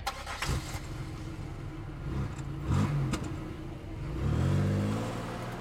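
A car engine cranks and turns over, idling with a low rumble before it revs up and accelerates, the pitch climbing toward the end. Fairly loud, with no voices.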